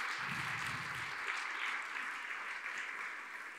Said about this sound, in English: And wasn't it great? Let's give these guys a round of applause again.